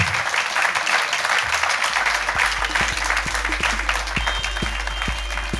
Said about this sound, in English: Ladies and gentlemen, please give a massive round of applause to the incredible Ben Shephard!